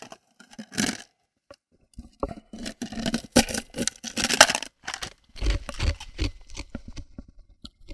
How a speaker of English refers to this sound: Podcast 101, crunching ice into the microphone.